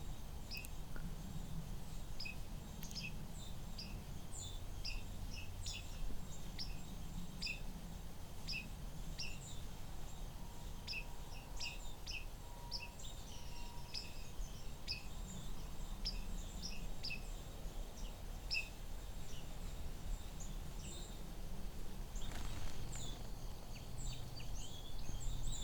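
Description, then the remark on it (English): Many high, thin seep notes and short blip calls, mostly from white-throated sparrows with a few song sparrows, scatter throughout, some blips chained in quick runs, over a steady low rumble of background noise with no voices. “These are mostly white-throated sparrows, so there's a few song sparrows in here.”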